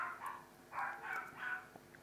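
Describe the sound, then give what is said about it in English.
Dogs barking faintly downstairs, a quick series of about four high, yappy barks in an uneven rhythm, with no talking over them. “Dogs are barking downstairs.”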